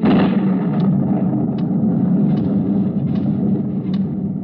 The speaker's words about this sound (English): It was a three-hour drive to Lake Watika, which was bad enough. But to top it off, it started to rain, and rain hard.